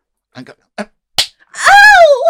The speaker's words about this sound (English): why did you slap me last night? Slap me.